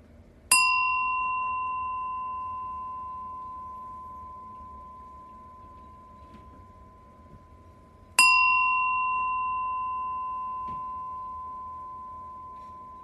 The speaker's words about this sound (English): Go ahead and take 3 deep breaths. I'm going to ring the bell 3 times to begin our meditation.